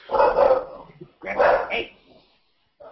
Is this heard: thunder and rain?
no